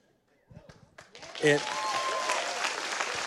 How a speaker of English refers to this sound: Listen, I didn't even tell you guys what I was going to tell you. You just gave it. You will cheer even without knowing what I'm talking about.